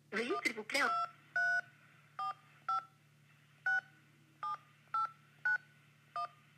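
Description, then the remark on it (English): A series of about ten touch-tone keypad beeps entering a phone number in reply to an automated credit card call, each short dual-tone press clear, following a brief burst of speech at the start, with a low steady hum underneath. “Please enter the phone number from which we contacted you.”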